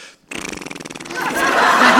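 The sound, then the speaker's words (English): A person imitates a cat purring with a fluttering mouth sound in rapid, even pulses that swells into a louder, rougher, breathier rumble toward the end. “Yes, please do the purring that comes out of the mouth of a cat.”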